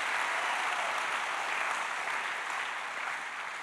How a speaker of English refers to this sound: I reckon everybody hearing this should just give God a big clap right now. Come on. Come on.